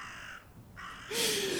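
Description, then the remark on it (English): A raven croaks loudly, a harsh, rasping call with a brief pause between bursts, the last caw the strongest and most drawn out. “Like a sound effect of a raven or something? I will put one in.”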